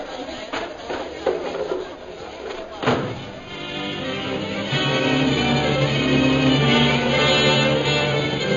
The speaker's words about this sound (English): Knock the table over so he can't catch us.